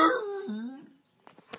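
A neighborhood dog lets out a drawn-out, falling howl that trails off, followed after a short pause by a few quick, breathy yips or snuffles, moderately loud.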